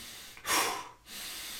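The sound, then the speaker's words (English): A quick, forceful breath out followed by a brief pause and a steady breath drawn back in, fairly loud, with no talking. “Like, the reason I do that is because CO2 levels are rising, and I instinctively am trying to like blow some out to get the CO2 levels back down.”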